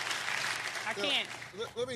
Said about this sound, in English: I don't know why y'all clapping.